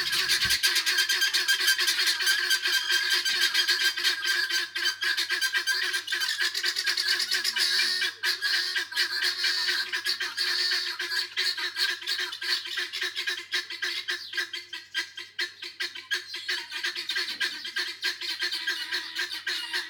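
A flock of guinea fowl calls nonstop, a harsh, raspy chorus of rapid, repeated cackles and squawks that stays loud and dense throughout, with no voices present.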